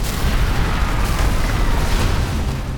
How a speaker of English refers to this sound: He blew a fireball at the city buildings, then another.